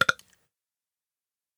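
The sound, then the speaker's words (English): A short, abrupt dog burp made of two quick gulping pulses, moderately loud, over in about a third of a second and followed by silence. “Dog burps on Twitter.”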